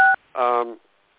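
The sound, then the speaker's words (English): A single short two-tone keypad beep from a button pressed on a phone sounds clearly, followed after a brief pause by a quick burst of a person's voice; the beep itself is crisp. “Don't be playing with the buttons on your phone.”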